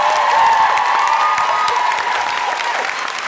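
A sustained round of applause from an audience, dense clapping with some cheering mixed in, loud and steady throughout before easing slightly at the end.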